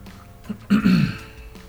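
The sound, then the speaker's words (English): A single short, rough throat-clearing cough caused by allergies, moderately loud, lasting under half a second against a quiet background. “It's just every once in a while I get a cough.”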